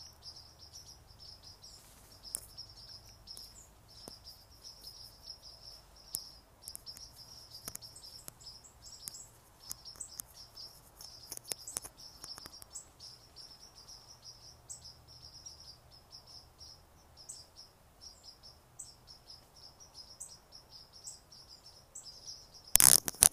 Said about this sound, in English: I'm standing under some very tall bamboo, and they're full of birds. And I can't remember the name of it, the type of bamboo, so we'll just listen to the birds.